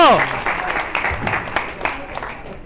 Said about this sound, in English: Ladies and gentlemen, let's give a warm round of applause. Sorry. right. We just got out of the world premiere for Spham the Silver Wing, the new installment for Last Exile for here at Anime Expo.